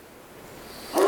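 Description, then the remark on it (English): During a church sermon, a single sharp sneeze bursts out at the very end, loud and breathy, after a stretch of quiet background hiss with no talking. “Bless you.”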